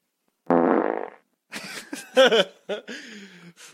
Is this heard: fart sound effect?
yes